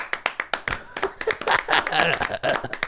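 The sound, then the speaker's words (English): A burst of hand claps, put in during post-production, sharp and loud at first in quick separate slaps, then blending into denser clapping with voices chattering and cheering over it. “They're still clapping for you.”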